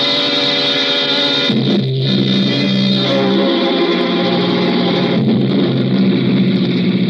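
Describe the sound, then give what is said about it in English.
A car engine hums steadily and loudly as the vehicle is driven slowly through the Ozark Mountains of Missouri, its droning pitch dipping and shifting a little partway through, with no voices. “I got into the car again and drove on slowly.”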